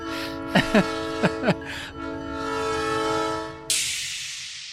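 A freight train's loud horn blares steadily for several seconds, with a few short sharp squeals early on, then gives way to a rushing roar of the train passing.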